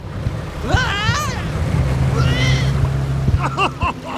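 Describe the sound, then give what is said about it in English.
A small boat, steered by a kid, moves through water with a steady low motor hum and water wash throughout, with wind on the microphone, while voices call out intermittently over it. “Just steer the boat, kid, and let the grown-ups talk.”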